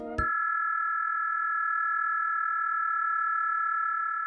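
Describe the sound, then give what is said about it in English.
A steady near-ultrasonic data-transmission tone at around 18,000 to 20,000 hertz, used for ultrasonic communication, pure and unwavering, holds at an even level for about four seconds after a brief low burst at the start, with no voices. “Just on the edge of human hearing, at around 18,000 to 20,000 hertz, data is being transmitted over sound.”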